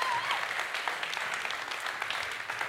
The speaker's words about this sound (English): Awesome. One more round of applause for everybody. Thank you, guys.